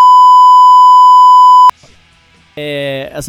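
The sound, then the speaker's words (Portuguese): A loud, steady censorship bleep covering a spoken person's name, one continuous high-pitched tone lasting under two seconds, cuts off abruptly; after a short quiet gap, someone starts talking. “Fala o nome da pessoa e eu vou censurar.”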